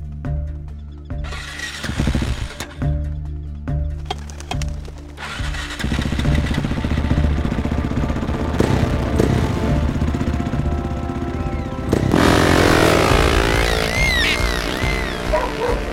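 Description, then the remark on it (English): A motorcycle engine idles with a steady low rumble, then revs up loud, its roar surging and climbing sharply near the end before easing slightly, during a desert race on sand dunes. “When we finally get out to the dunes, I get a sense of how exhilarating and precarious racing on sand is.”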